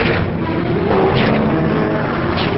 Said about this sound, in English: The helicopter takes off again, bullets flying all around it.